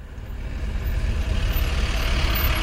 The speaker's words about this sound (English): Oh, look, look, look at that. Deserters being carted by in that truck. Look at their sad faces.